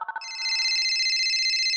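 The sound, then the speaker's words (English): A few quick electronic beeps, then a bright, steady warbling telephone ring that trills continuously and fairly loudly, with no voices. “Now let's phone a friend.”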